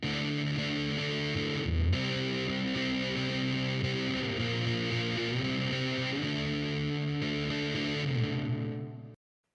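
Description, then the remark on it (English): A heavily distorted electric guitar played through reverb followed by a fuzz drive pedal drones with fuzzy, noisy echo smearing each note into a dense wash, growing harsh and edging toward feedback before cutting off abruptly. “So you heard, especially in the end there, that echo was very distorted, very nasty, just overall very noisy, sounding like it was about to feedback.”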